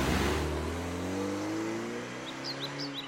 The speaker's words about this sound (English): She turns on her car and drives away, wiping a tear from her eye.